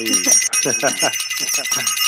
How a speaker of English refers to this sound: Yeah, ring that bell. Thank you for the. Oh, yes. Let me ring that bell. Let me ring that bell.